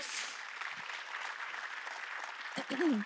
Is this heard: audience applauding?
yes